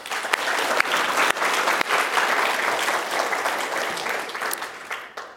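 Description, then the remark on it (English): A crowd breaks into sustained, dense applause, many hands clapping together at a steady loud level for several seconds before beginning to thin out at the end, as the audience answers by applause whether they believe the Bible is the Word of God. “By applause, how many of you believe that the Bible is the Word of God?”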